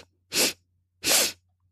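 Quick, forceful sniffing inhales rush through the nose in a breathing exercise, fairly loud, spaced about a second apart with quiet between them and no talking.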